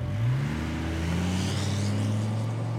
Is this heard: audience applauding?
no